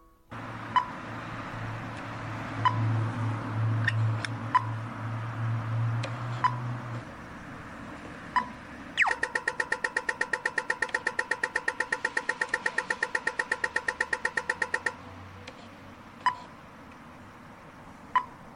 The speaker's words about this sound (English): the sound of a pedestrian crossing indicator or traffic light used in Australia, which makes a ticking type sound just like this.